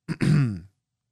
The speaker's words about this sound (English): Allow me to clear my throat